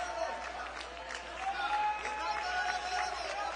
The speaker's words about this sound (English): Oh, clap your hands again, all you people, and shout unto God.